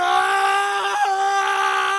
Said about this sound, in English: He closed his eyes and screamed as loud as he could directly at the face. This lasted for what felt like hours to John.